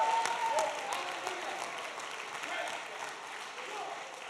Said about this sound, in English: If you believe that with me tonight, clap those hands again and give God another shout of praise.